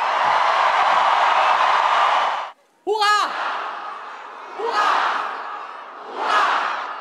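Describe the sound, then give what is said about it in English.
A large crowd welcoming the new king and Queen Mary on the balcony roars with loud, dense cheering, falls briefly silent, then shouts hooray in unison, the chant swelling and fading about three times at a steady rhythm. “Emotions ran high for the new king and queen as the crowds welcomed them with cheers of hooray.”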